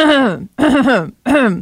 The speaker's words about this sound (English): It's talking about me clearing my throat. Oh. It's pollen season. Always blame it on the pollen.